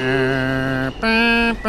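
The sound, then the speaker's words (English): A New York subway train's departure chime, heard on the platform as the train is about to leave the station, sounds loud: three buzzy electronic tones in quick succession, the first held longest, the next stepping higher, the last just beginning as it ends. “Yeah, that's the noise. Oh my god, that is the New York sound.”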